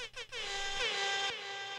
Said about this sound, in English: Should we give her the super air horn? Yeah. Well, no. Let's give her just the regular air horn, but maybe multiples.